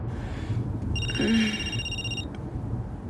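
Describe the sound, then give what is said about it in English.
A telephone rings once, a steady high-pitched electronic trill lasting just over a second, heard over a low rumbling room background with no one speaking. “I've been ringing for long. Just started. Hello? Who is it?”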